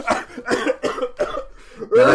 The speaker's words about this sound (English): Sorry, I'm so sorry. I'm trying not to cough. It's almost like I'm sick.